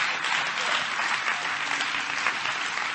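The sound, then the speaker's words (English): A large group clapping their hands in praise to the Lord, a continuous dense steady wash of many hands at even loudness, without any voices standing out. “Come on, clap your hands to the Lord and give Him some praise.”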